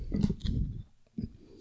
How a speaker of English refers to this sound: Were you going to burp? I did. Oh, gross.